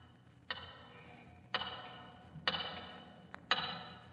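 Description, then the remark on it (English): A big tower clock ticks slowly and loudly, one sharp resonant tick about every second, each ringing out briefly, with a faint extra click between two of them and no voices. “And as he watched the hands of the big tower clock, he could hear its ticking in his mind's ear, as clearly as though it were inches away.”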